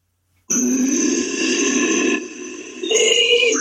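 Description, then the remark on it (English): A person growls with their voice, a sustained, rough, guttural rumble lasting about three seconds, dipping briefly and then swelling louder at the end. No one speaks. “Like a proper growl, I haven't done in a while.”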